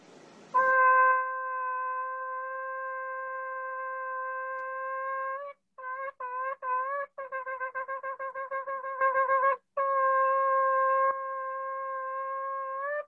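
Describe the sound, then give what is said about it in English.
A shofar muffled by a sock in its bell sounds a long steady blast, then several short broken notes, a rapid run of staccato bursts, and another long sustained tone, all mellow and subdued. “Exhibit A, shofar, a very loud instrument. Exhibit B, a sock.”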